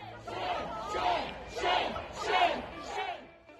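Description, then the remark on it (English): A large crowd of the mayor's constituents chants "shame" in unison at him as he walks away, the single word shouted about five times in a steady, evenly spaced rhythm, loud. “You know, as he was walking away, they chanted, shame.”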